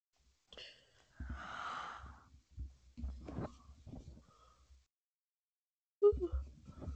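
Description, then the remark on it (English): A long, breathy yawn stretches out, with airy exhaling and low voiced groaning, followed by a few murmured sounds and another breath near the end. “Dude, I can't stop yawning.”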